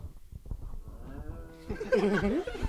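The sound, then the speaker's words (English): A person imitates a cow with a drawn-out, wavering moo, loud, building from low grunting sounds into a stronger bellow near the end. “That's like a cow.”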